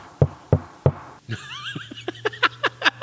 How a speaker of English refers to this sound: He's going to crinkle up that cup real quick.